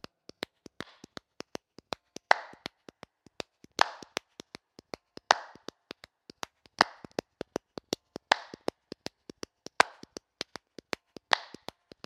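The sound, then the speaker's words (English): Sharp hand claps repeat in a steady rhythm, mixed with quicker light taps between them, fairly quiet, with no one speaking. “Clapping, clapping, clapping.”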